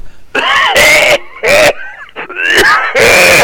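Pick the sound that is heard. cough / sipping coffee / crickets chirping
cough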